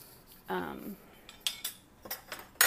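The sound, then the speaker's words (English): Dishes and cutlery clatter as they're unloaded: a short scraping squeak, then a series of bright, irregular clinks of metal and crockery, the last one loudest. No voices. “Okay, let me get all the dishes”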